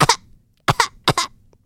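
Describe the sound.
A voice imitates a parrot coughing from a passenger's cigar smoke: three short, raspy double coughs spaced evenly apart, fairly loud, with brief silences between them.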